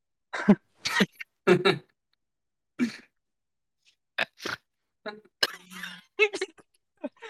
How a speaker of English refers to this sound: Hold on, I like that snort, bro. I mean, I know you look like a pig, but I know you sound like one too.